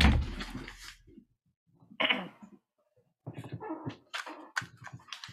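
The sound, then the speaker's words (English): A dog barks in several bursts of short, sharp barks, with a brief pause between the early barks and a rapid volley toward the end. “I'm recording my podcast, so he was barking.”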